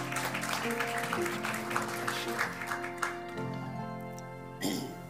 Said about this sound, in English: Let's give the Lord a hand clap of praise this morning.